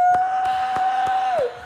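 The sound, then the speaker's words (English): A single voice holds a long, steady cheering whoop that dips in pitch at the end, while a handful of evenly spaced claps ring out beneath it, close and fairly loud. “Let's give a round of applause for another episode.”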